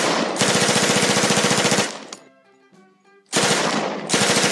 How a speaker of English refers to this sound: Suddenly, a blast of machine gun slugs hammer at the vigilante.